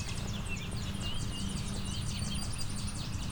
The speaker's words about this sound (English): As you can hear, I'm being surrounded by Tennessee warblers.